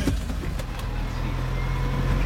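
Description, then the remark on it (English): A truck's engine runs with a steady low rumble as it pulls up behind a small blue house on a residential street, with a few faint clicks and rattles early on and no voices; the engine keeps going rather than cutting off. “We pull up behind a small blue house on a residential street, and an older woman comes out to meet the truck.”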